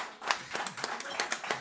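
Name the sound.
applause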